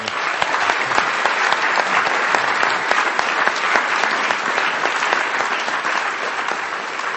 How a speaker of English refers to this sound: A round of applause.